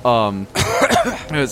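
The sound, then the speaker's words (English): A voice imitates a fit of coughing through dust: a drawn-out vocal sound, then a cluster of harsh, breathy cough bursts and a final strained voiced tail, fairly loud. “coughing through the dust.”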